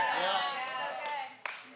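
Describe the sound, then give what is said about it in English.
A scattered round of audience clapping, a couple of claps given on request, moderately loud, mixed with a sustained voice or tones and ending in one sharp, distinct clap near the end. “Couple claps.”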